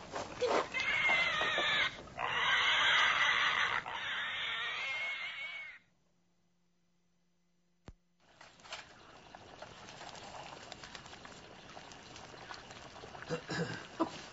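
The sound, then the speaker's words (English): Pigs squeal loudly and continuously for several seconds in shrill, harmonic cries as they are being stuck with a butchering knife in a barn. A brief silence and a sharp click follow, then a lower, muffled rumble of background noise. “We'll stick them in the barn and then run them up the house.”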